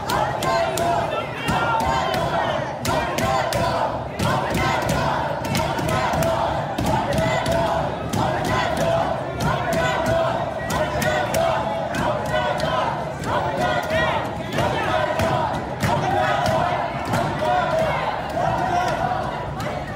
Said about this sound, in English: Kentucky, voters took to literally banging on the doors of the Kentucky Exposition Center during the primaries as the 6 p.m. deadline to vote neared.